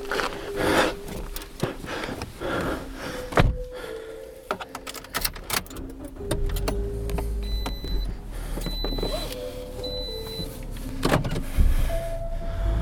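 Traffic noise with a steady low rumble of passing cars, broken up by mechanical clicks and whirring, moderately loud throughout with no one speaking.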